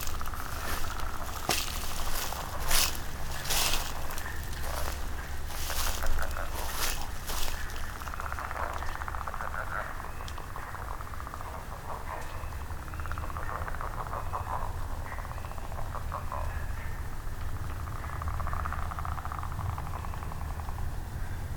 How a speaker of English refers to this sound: I believe I'm coming up on some wood frog.